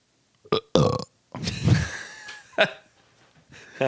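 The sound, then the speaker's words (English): A loud burp drawn out for about a second, framed by a few short, sharp gulping bursts before and after, with no talking. “My bad. Nothing funnier than a burp.”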